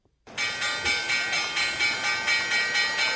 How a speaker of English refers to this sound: I hate to press this button. Let's see what the closing bell looks like today on Wall Street.